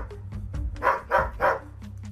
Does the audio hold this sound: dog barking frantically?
yes